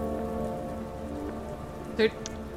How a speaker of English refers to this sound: But it's quite dark outside because it is raining quite fucking heavily.